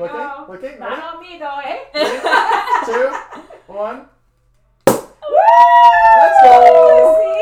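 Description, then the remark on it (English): A shaken bottle is opened with one sharp, loud pop after a brief hush. People chatter beforehand, and a long, high whooping cheer follows right after the pop. “So if you guys hear silence, it's because we're trying to open this bottle.”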